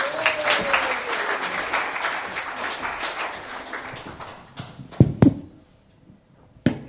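A crowd applauds with dense, steady clapping that gradually thins and fades, followed by a few sharp knocks or thumps as the applause dies away.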